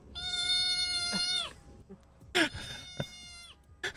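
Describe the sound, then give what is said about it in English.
A cat meows twice from a video being played, a long, steady, high-pitched cry followed after a short pause by a second, rougher meow, fairly clear with no talking. “sent me a video of an adorable cat being like super adorable.”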